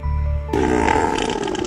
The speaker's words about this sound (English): Can you believe that's a fish? That is a Kelly Brown... It's a belching fish. Burping like fish right there. Kelly Brown burping fish.